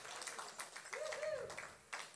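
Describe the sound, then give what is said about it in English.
A crowd at a church service applauds the helpers at the front with a steady, dense patter of many hands clapping at once. It is fairly soft overall, with a brief high whoop or whistle rising over it midway. “All right, well, let's give our people up here a big applause.”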